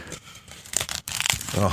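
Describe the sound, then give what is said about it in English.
A piece of paper being torn in half: a few quick, crackling rips in under a second, with softer crinkling around them and a voice starting up right after. “So I'm going to tear this piece of paper in half.”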